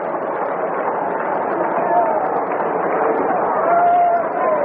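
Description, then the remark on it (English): A Cardinals baseball crowd at a game cheers in a continuous, dense roar that holds steady for the whole stretch, with a few thin whistles rising briefly above the mass of voices, as Jackson pitches to McCarver. “Cardinal crowd, much alive now.”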